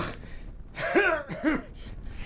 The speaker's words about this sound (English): How long have you had that cough?